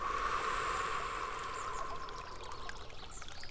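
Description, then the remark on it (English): Water flows steadily in a continuous rushing wash with a bright, bubbling texture, holding an even level throughout with no voices. “As you just close your eyes and listen to the sound of the water flowing by you.”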